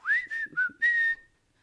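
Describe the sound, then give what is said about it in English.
A person whistles a short melodic phrase of four notes from a song's chorus, rising then dipping, ending on a long held tone, clear with no talking. “Part of the chorus goes, has like a whistle in it.”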